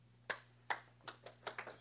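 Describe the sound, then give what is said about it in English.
A handful of sharp hand claps, about eight, arriving irregularly and speeding up toward the end, with a steady low hum underneath and no voices. “Thank you for the hand claps.”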